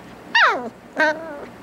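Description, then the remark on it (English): A puppy lets out two high whimpering yips, the first sliding downward in pitch and the second held a little longer, with no other sounds around them. “And then I want you to take a look at this painfully adorable puppy.”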